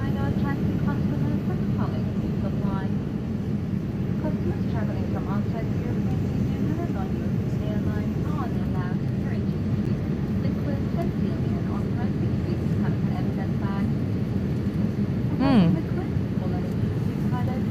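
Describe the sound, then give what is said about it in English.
A steady, low rumbling drone of an airplane fills the whole recording, loud and continuous without fading, with faint indistinct voices murmuring underneath. “Another plane with a chemtrail?”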